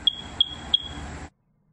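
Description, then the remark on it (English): Three short, high-pitched electronic chirps from a smoke detector signaling a low battery, in a quiet house. The chirps are evenly spaced about a third of a second apart, recur every 45 seconds, and sound over a steady background hiss that cuts off abruptly. “It's your smoke detector. Every 45 seconds. Yeah. You got to change the battery.”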